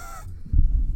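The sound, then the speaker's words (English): A voice imitates a short, raspy wheezing gasp, harsh and strained for a split second, then breaks off into low, muffled rumbling and handling noise. “I'll just go run a mile before I go in, so I'm just wheezing myself almost to death.”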